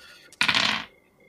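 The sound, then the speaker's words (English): Dice rolled in a game after an attack scores a critical hit: a short, bright clatter of dice tumbling across a hard surface, a dense rattle of rapid clicks lasting about half a second before stopping abruptly, with no voices over it. “Prepare for lots of dice rolls.”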